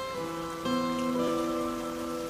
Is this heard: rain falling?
yes